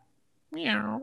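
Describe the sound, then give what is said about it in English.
In an 8-second video clip of Steven Seagal, a voice imitates a cat's meow once, a single drawn-out, nasal, fairly loud call rising then falling in pitch, after a short quiet moment. “Meow. You're my cat.”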